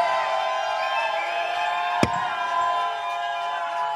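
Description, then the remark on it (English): An audience cheers and applauds for a band in a steady, dense roar that holds at an even loudness throughout, with one sharp crack standing out midway through. “All right, you guys, give it up one more time for the ….”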